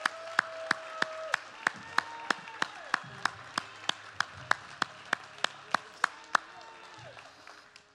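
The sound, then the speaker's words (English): A church audience claps in unison as a hand clap of praise celebrating Jesus, a steady, brisk beat of around sixteen sharp claps that stop after about six seconds, over faint background music and murmuring voices. “Come on, if you agree with that today, why don't you give Jesus celebration, amen, hand clap of praise.”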